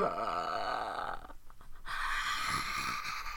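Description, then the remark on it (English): A voice imitates a snoring pug: a loud, raspy, nasal rattle held for over a second, a brief choppy pause, then a second gravelly snort-like stretch. “The pug always sounded like it was asleep because it was snoring”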